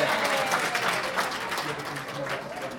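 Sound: audience applause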